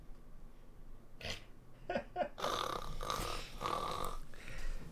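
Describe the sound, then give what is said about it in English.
A person fakes snoring, making a few short snorting bursts and then a longer stretch of rough, throaty snores. No one speaks. “Yeah, how I know you're fake sleeping is when you fake snore.”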